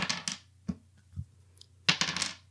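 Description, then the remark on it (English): Dice clatter in quick bursts, a rattling tumble, a few lone knocks, then a final longer skitter across a hard surface, with a faint steady hum underneath and no talking; the dice are rolled for a face adversity roll and come up 6. “6 on the dice plus 1 in metal.”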